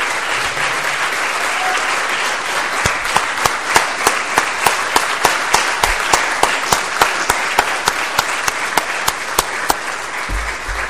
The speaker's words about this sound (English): Is there anybody here today that's ever served in the armed forces or is serving in the armed forces? I'm one of them. I served in the Navy out of high school. Could you stand up, please? And give them a round of applause.